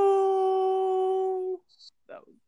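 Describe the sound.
A man's voice imitates a wolf howl: one loud, sustained steady note lasting about a second and a half, cut off abruptly, followed by a couple of brief, faint rustling sounds.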